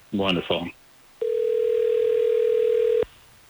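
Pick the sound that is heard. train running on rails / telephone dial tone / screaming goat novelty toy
telephone dial tone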